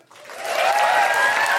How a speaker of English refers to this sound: And can we have an enormous round of applause for everyone that we saw? Felicity Ward, Michelle de Swarte, Helen Bauer, Grace Petrie, and once again, the wonderful Ellie Dixon.